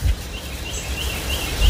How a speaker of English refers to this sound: Who was that? Wood thrush coming through.